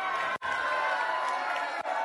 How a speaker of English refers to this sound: Cheer on your contestant.